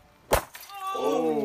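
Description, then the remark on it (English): Three glass light bulbs on a chair shatter on the Super Human Show: a single sharp, loud crash with a brief second crackle, followed by a sustained, rising vocal cry. “Come on, we're gonna get a different light bulb chair.”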